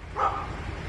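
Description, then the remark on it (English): A single sharp bark from a dog wading through swampland in Florida, one short bright burst that quickly fades into a low background rumble. No one speaks. “Dog wading through some swampland in Florida.”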